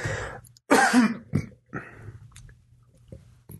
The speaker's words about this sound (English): All right, I'm done coughing all over the microphone. Sorry about that. It happens.